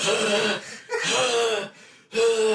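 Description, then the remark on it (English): Three loud, raspy bursts of rapid, panicked breathing from a man having a panic attack and breathing into a paper bag, with a slightly hollow, muffled quality, each gasp separated by a brief pause. “But as he's breathing into the bag, it's just...”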